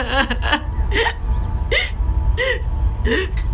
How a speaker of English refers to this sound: Her sobbing turned to hiccups, turned to sudden, mute silence.